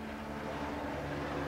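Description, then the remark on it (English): A steady, droning engine roar from a helicopter passing overhead, holding a constant low hum at moderate loudness with no voices. “Oh, is that a helicopter?”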